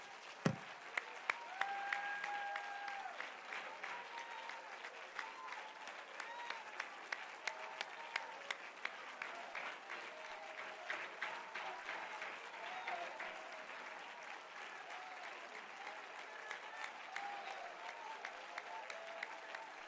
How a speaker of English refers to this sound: Would you just relentlessly clap your hands to the Lord right now?